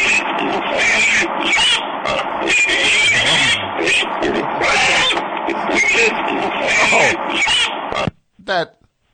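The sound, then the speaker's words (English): A pig squeals and grunts loudly and continuously for about eight seconds, harsh, then cuts off abruptly, followed by one short final squeal. “Wait, did she actually turn him into a pig?”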